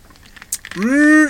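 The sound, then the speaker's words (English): A quick, soft sip of Dr Pepper Zero diet soda with faint clicks and a brief slurp, followed right away by a loud, satisfied voiced "ahh". “It's getting to that time of year where things get very dry inside, so I have to take a little sip here.”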